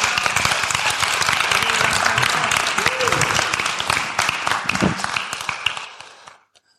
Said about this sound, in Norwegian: Skal vi gi en stor applaus?